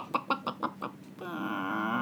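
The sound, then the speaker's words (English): A voice imitates a hen laying an egg at midnight: five quick, evenly spaced clucks, then a long drawn-out squawk that holds to the end. Fairly loud, with no other talk. “it makes the sound of a laying hen at midnight.”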